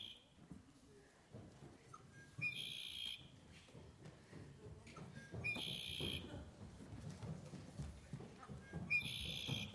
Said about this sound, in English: What is that? A little birdie. It's a bird, huh?